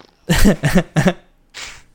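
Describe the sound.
A fake fart made with the mouth: three quick, loud, buzzy sputters in a row, then a softer, breathy puff trailing after a brief pause. No one talks.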